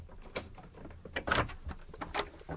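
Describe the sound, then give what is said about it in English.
Moderately loud clicks and clunks of a key working the lock of a door to the street, followed by the door swinging open with a rattling scrape, a short sequence of distinct mechanical knocks with no voices. “But he found that his key also opened the door to the street, and he let himself in and walked up the stairs to his room, still rather bemused by what had happened.”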